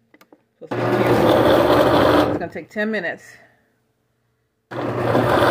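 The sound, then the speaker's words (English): A Ninja Foodi hot and cold blender makes a ginger shot from water, turmeric and agave. A loud, steady motor whir runs for about a second and a half, cuts off while a person speaks briefly, then after a pause the whirring starts again. “In My Ninja Foodi Hot Cold Blender”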